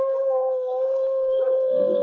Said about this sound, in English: A moment later, the gray wolf stood over his vanquished foe and gave vent to an eerie howl of victory.